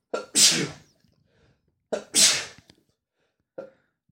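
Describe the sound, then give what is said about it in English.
Two loud sneezes in quick succession, each with a sharp inhaled buildup and explosive burst, followed by a brief sniff-like sound; no talking. “What is a sneeze?”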